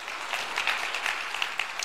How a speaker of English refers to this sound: Give the Lord a great hand clap for that.